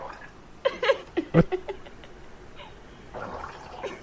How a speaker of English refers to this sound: See? Like its tail is under the water and it's like bubbling. Yeah. As it farts. Stop farting.